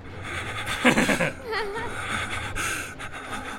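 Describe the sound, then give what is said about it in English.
A voice imitates heavy, panicked breathing: a burst of ragged, gasping huffs, followed by strained, wavering vocal noises that trail into quieter breathy sounds. “And you're like, you're breathing like.”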